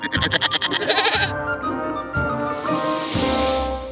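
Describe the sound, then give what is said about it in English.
A goat bleats loudly, starting with a rapid quavering tremolo and drawing out into several long, nasal bleats in a row, with no talking. “In the fairy tale, Three Billy Goats Gruff, the troll who lives under the bridge wants to eat the three billy goats.”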